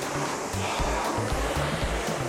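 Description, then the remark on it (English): Oars dip and pull through water beneath a high vaulted ceiling with sandy banks to the side, in a steady rhythm, soft splashes and low knocks repeating about every half second over a constant watery wash, with no voices. “Let's keep on rowing, eh? Keep on investigating.”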